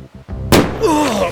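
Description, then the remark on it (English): A firecracker with its fuse pinched to a nub bursts right above two people's heads by slippery rocks and rapids: one sharp, loud bang after a quieter lead-in, leaving a hissing tail and a wavering tone that slides up and down as it fades. “The firecracker goes off right above their heads.”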